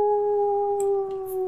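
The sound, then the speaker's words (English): A dog lets out a long, sustained howl on a steady pitch, loud, filling the whole moment with no one speaking over it. “We do howl when the service vehicles, emergency services vehicles come by.”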